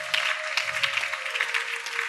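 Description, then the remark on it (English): A church audience claps steadily in praise, a dense, continuous patter of many hands at moderate volume, with a faint sustained tone running underneath throughout. “I like the way you are clapping. Add more.”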